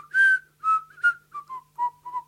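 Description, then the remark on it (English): A sucked-in whistle made by a man drawing air inward, a run of about seven short, breathy notes that drift downward in pitch, fairly loud with no talking. “Even with his sucking whistle.”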